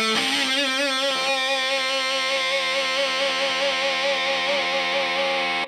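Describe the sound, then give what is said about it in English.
A single electric guitar note played through an octave distortion pedal rings out heavily distorted with a thick octave-doubled tone, sustaining steadily and loud for several seconds with slight wobble, no voices present. “You've got your octave distortion filter amplitude.”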